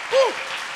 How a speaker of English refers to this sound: Oh, could you clap your hands again to Jesus?